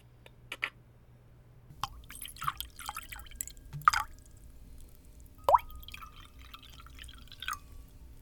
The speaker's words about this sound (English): Get Gordy a real drink. Cleo pours both Gordy and the coach a drink.